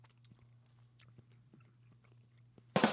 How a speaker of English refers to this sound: We have a photo. We have a crunch and a gross sound effect of you chewing.